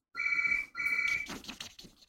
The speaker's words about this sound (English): I've used up probably all the ink, but phone's going now.